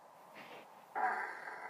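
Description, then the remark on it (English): A short burst of odd animal noises: a soft breathy puff, then a louder raspy, snorting buzz that holds for about a second, with no talking. “This is a possum making weird noises.”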